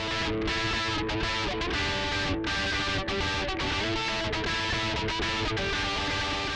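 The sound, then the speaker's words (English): Thick, buzzing distorted electric guitar chords from a third guitar part, playing distortion on certain parts of the song, ring out loudly and continuously, layered into a dense rock mix with steady, driving energy and brief rhythmic breaks between strums. “The song needed a little more dynamics and punch, so I added a third guitar playing distortion on certain parts of the song.”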